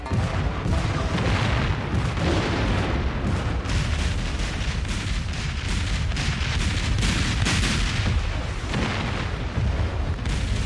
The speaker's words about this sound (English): This battle is primarily an artillery duel, which lasts all morning, early afternoon. The Federals have about 13 cannons, which they establish across the valley and began bombarding this Camp Bartow.